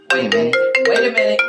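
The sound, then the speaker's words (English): A bright electronic ringtone of an incoming FaceTime call on a laptop, a repeating melodic chime of rising tones with sharp attacks, loud, playing continuously with no voices over it. “That's my laptop. I can get FaceTime through my laptop.”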